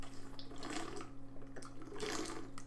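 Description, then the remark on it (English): Water runs from a tap in two short gushing bursts, with a steady low electrical hum underneath and no one talking. “Sorry, I needed some water.”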